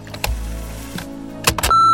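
An answering machine clicks and clunks a few times over a low hum, then lets out a steady, mid-pitched electronic beep that holds on loudly to the end.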